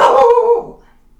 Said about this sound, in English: That would be my dog.